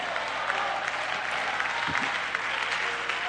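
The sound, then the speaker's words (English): A crowd applauds steadily and loudly in a hand clap of praise to the Lord, dense clapping filling the whole stretch, with a faint voice briefly rising beneath the clapping. “Give the Lord a hand clap of praise tonight.”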